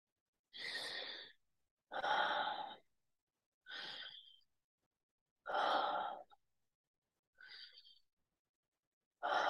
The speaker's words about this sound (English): Keep going. nice interconnected breathing. There's no pause in between.